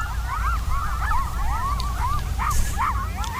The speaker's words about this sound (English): And they're not birds. This is my first audio postcard with some mammals. That's a whole stack of coyotes. I'm at Anza Borrego Desert State Park in Southern California.